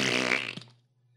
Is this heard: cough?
no